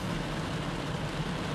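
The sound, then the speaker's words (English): A steady, dense hiss of heavy rain pouring down without pause, its broad wash of noise holding an even loudness throughout, with a low rumble underneath and no voices. “Ah, my friends, the rain is falling even harder, as you can probably hear in the background.”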